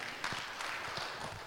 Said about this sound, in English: Clap for him.